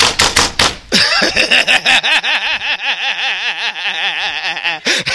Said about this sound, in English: And then if you do that 5-0 knock, you know that 5-0 knock. Maybe some of y'all shouldn't know.